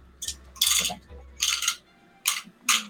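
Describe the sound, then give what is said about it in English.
Dice are rolled for initiative in a tabletop game, clattering on a hard table in several quick bursts of rattling clicks, with short pauses between throws and no one talking. “If I roll initiative for them, it's mm-hmm. going to put initiative.”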